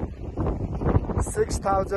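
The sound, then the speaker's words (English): Loud, blustery wind buffets the microphone in gusty roars at Camp 2 on a mountain, 6,536 meters up, with a voice speaking beneath the rumbling noise. “It's very windy here.”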